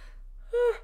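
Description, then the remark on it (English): A person yawns: a faint breathy intake, then a short, loud voiced groan that holds a steady mid pitch before trailing off. No one speaks. “I'm yawning.”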